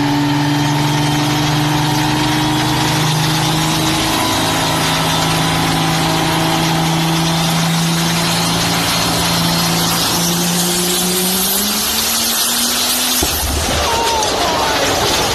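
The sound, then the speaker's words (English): A loud truck engine runs hard with the truck up on a riser, its droning pitch climbing steadily as it revs higher, then breaks off abruptly into a harsh, noisy burst near the end as the engine explodes. “That's how violently this engine exploded on this guy.”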